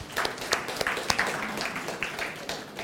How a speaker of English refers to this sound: So let's go there. Give her a clap, please.